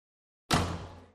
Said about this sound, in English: The door closed behind her with a slam.